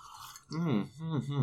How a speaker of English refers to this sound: The tea of today's episode is Madagascar vanilla. Let's take another sip together, guys.